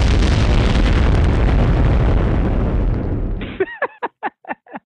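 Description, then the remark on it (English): A loud, sustained head-explosion sound effect roars and rumbles for several seconds, then cuts off into a quick run of five short, pitched vocal bursts like laughter. “That's why he's going to add the head explosion right now, again, right now.”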